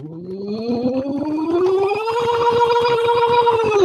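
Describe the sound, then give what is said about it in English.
A singer hums through a pocket vocal trainer to reach the top of their range, sliding steadily upward in pitch in a buzzy, fluttering siren-like glide, then holding near the top. It is moderately loud, with no talking. “If they go, yeah, and they crack and they can't get to the top, I'll have them use the pocket vocs and instead go.”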